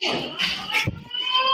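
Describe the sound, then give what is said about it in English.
A school fire alarm rings in a steady, shrill high-pitched tone throughout, with a single dull thud partway through and faint shuffling movement underneath. “The alarm's going off the whole fucking time.”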